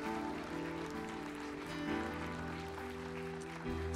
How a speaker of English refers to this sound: Come on, Parkway, would you give the Lord a big round of applause today? Hallelujah.